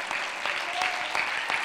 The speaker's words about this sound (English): Come on, let's give him a good hand clap of praise. We love you, Jesus.